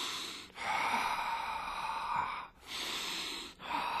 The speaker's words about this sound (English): But in the yogic community, there's a way of breathing that's very deep.